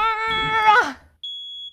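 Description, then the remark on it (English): A loud, buzzy electronic tone sounds and slides downward, then after a short gap a single shrill, high-pitched smoke detector beep rings out clearly on its own. “When I first heard the smoke detector, I wasn't alarmed.”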